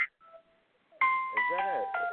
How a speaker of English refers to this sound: Is that me making that? No, that ain't you. That's my cell phone, and I just figured out how to turn it off.